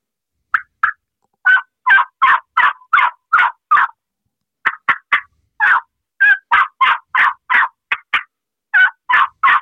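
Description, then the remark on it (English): A turkey call plays an excited run of yelps mixed with sharp clucks and cuts, loud, in two quick rhythmic bursts separated by a brief pause, with no talking. “What I mean by realism, instead of just yelping, add some clucks, some little cuts, and add more excitement to the calling, like this.”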